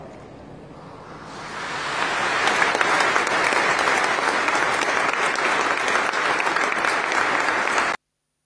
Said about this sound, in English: Applause at a full Catholic Church service funeral. That would be unusual, I would have thought.